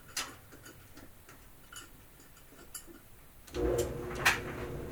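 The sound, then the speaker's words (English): A clothes dryer door shuts after a dryer sheet is added and its dial clicks through a series of light, quick ticks to the easy care, more dry setting, then the machine starts up with a steady rumbling hum and a brief knock. “Dryer sheet. Shut the door. Let it rip. Easy care, more dry.”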